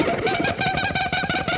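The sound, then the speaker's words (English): An electric guitar mimics a dolphin's call with bright, rapidly fluttering squeaks that repeat in quick pulses, sustained at a steady level for a second and a half with no talking. “And he actually did a dolphin sound as well.”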